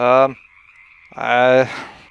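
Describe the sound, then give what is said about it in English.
Two loud frog croaks from frogs by a river, each a harsh buzzy call lasting about a quarter second, separated by a pause with a faint steady high insect-like drone underneath. “these frogs are actually not stopping and having anything to do with Cicero”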